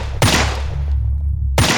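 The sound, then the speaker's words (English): Two loud, sharp gunshots about a second and a half apart, each a sudden blast followed by a decaying, booming tail, with a low rumble between them and no voices. “He fired three more enhanced rounds into what was left of its exposed skull.”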